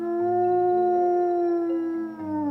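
A wolf lets out one long, sustained howl, holding a steady pitch before sliding slightly downward at the end. It sounds loud, with no voices or other sounds around it.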